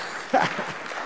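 A short burst of audience applause for the speaker's handyman, a steady wash of clapping from a crowd at moderate volume, with a faint voice briefly rising over it.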